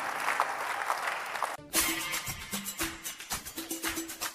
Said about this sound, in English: Come on, somebody, give a big clap offering to Jesus and praise him.